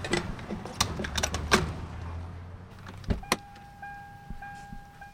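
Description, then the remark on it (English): Someone climbs back into a car after filling its tank with gasoline, amid clicks and rustling, then a door shuts with a single solid thud, followed by a steady electronic chime inside the vehicle. “Okay, it looks like it's full. That should do it. All right, well, let's get back in and get on our way.”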